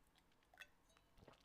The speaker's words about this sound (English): I'm going to take a sip on that one.